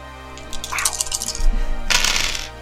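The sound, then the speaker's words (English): Dice clatter and tumble across a hard table, a flurry of quick clicks, then a second louder rattling burst, with no voices. “Can we get enough dice?”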